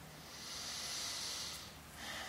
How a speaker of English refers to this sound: Breathe in and out through your nostrils. And start that ujjayi pranayama breathing technique by drawing a gentle contraction in at the back of your throat.